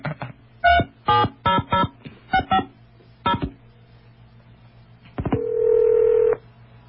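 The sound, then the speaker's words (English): A telephone number is dialed with touch tones: roughly nine short, clear dual-tone beeps in quick, uneven bursts, then a pause and a longer steady electronic tone. No one speaks. “This is Don's number. It was given to me by somebody on the inside.”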